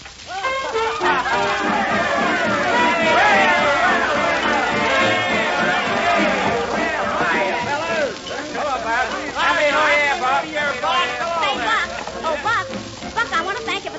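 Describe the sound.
A dense hubbub of many voices chattering at once, a lively party crowd in a parlor, steadily filling it with overlapping talk and laughter, fairly loud throughout.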